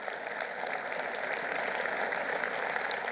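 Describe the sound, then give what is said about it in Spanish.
An audience applauds the Lord steadily, a dense wash of many hands clapping at an even level throughout, with no speech over it. “Den un aplauso al Señor, que Él se lo merece.”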